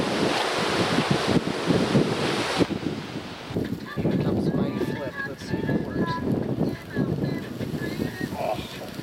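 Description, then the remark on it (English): Ocean waves and surf wash steadily in a loud rush, mixed with gusting wind noise on the microphone, while faint voices murmur underneath in the second half. “That's a little waves up.”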